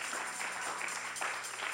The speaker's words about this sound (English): If you're happy, put your hands together for Jesus. Even if you are not happy, if you don't clap, it's a sign that you are living in sin.